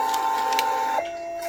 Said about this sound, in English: Unlike the checkout receipts, the hold slip from this printer is sticky. The library staff member takes that sticky paper with your name on it and attaches it to your hold, tub by tub, book by book, and DVD by DVD.